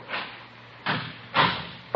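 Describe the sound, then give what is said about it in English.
A door is shut, with a few dull, separate thumps and rattles spread over a couple of seconds, moderately loud, with no voices. “Close the door there.”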